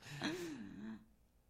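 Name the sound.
heavy breathing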